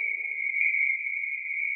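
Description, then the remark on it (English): A steady, high-pitched frog trill rings out at night beside a stream, without a break for the whole moment, even and unwavering, with a faint low rumble beneath it at first and no voices. “I heard the frogs.”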